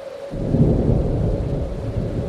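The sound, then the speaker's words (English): A deep, rolling rumble of thunder swells in after a brief quiet moment and keeps growling steadily, loud, with a faint hiss of stormy weather behind it and no voices; a thunderstorm with a snowstorm overhead, over fresh snow among crevasses. “There was a thunderstorm, a snowstorm parked overhead, and you could almost feel the electricity in the air.”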